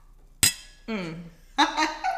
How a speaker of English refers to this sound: Clink.